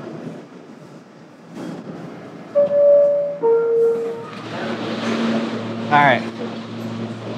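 A train pulls in with two loud, sustained horn tones, then a rising rumble of wheels and a sharp brake squeal near the end.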